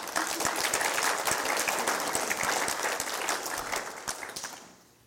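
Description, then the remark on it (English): A church audience breaks into sustained applause after hearing the church has no debt, a dense crackle of many hands clapping steadily for about four seconds before tapering off quickly at the end. “You can clap, y'all.”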